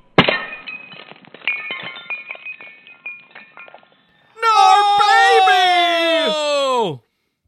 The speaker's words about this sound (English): so I smashed the champagne on the front of the boat, knowing full well that this would corrode the paint and possibly cause rot.